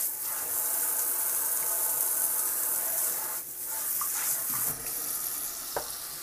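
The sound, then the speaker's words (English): A kitchen tap runs steadily with a bright, hissing rush of water as the water pressure comes back after suddenly dropping. The flow briefly dips and surges a couple of times, with small clinks and splashes. No one speaks. “Water pressure is back.”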